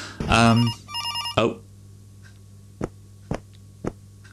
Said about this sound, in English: I'm in a room with a clock and a telephone and a window. Is it a telephone? It only rung once. Maybe it's an answer machine.